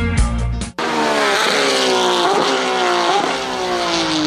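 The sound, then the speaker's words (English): A loud, high-revving Porsche GT3 race car engine screams, its pitch climbing and dropping through several rapid gear shifts, following a brief burst of other sound at the start. “That was a, those are Porsche GT3 sound effects there. I think I captured that at, I don't know, Daytona maybe, someplace like that, Sebring.”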